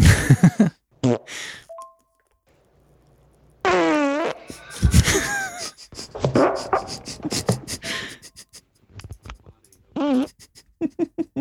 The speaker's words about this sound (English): Let's go back to listening to farts.